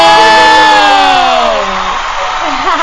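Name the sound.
crowd cheering and whooping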